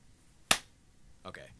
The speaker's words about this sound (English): Oh, wait, do a clap real quick. Quiet.